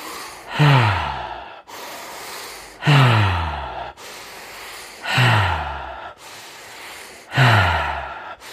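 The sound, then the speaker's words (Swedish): Four deep, even breath cycles during a guided breathing exercise, fairly loud, each exhale starting with a voiced, falling sigh before trailing into airy breath, paced roughly every two seconds. “Och se till att vi andas med känsla.”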